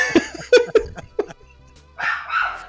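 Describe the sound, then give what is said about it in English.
A male puppy barks in four quick, sharp yips, then after a short pause lets out a longer, higher, strained bark-whine. “And maybe he'll shut up while we take a 5-second break.”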